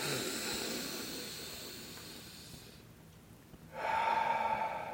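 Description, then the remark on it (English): A long, loud, airy inhale as part of a deep breathing exercise, then a brief held pause, followed by a rushing, noisy exhale. No talking. “All right, you guys breathing along at home?”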